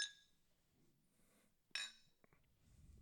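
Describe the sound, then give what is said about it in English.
Two bright glass clinks ring out, one at the start and another about halfway through, each with a short shimmering decay, as glasses of Cuthalion cider are tapped together in a toast; faint rustling fills the gaps. “We're drinking Cuthalion cider. Cheers.”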